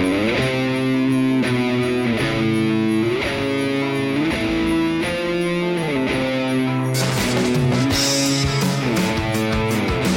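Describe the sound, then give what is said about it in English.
A rock song with thick, distorted guitars and steady drums, with sleigh bells jingling high in the mix; the bright shimmer swells in the last few seconds. No one speaks. “Yeah, a song that uses sleigh bells.”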